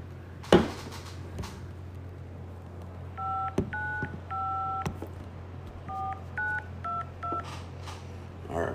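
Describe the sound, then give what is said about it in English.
A phone number is dialed to call a volunteer on the live show Tequila Chronicles: a string of short, bright keypad tones beeps out in quick, uneven succession, each a clean dual-pitched chirp over a low steady hum, with a few faint clicks. “I have a volunteer for you to call. Call this number right here.”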